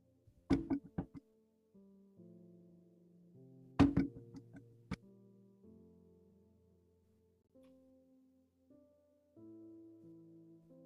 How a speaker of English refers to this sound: Just bear with me one moment while I knock on this door.